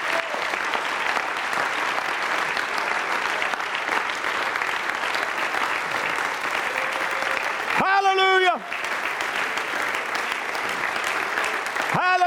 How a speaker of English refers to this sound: Won't you give him a clap offering this morning? Just praise him.